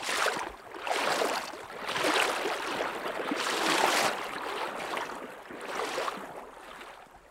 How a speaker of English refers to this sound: and we slosh across to the other side. The rushing water squeezes the waders tight and cold against my legs, and I have to lean into the current to avoid toppling over.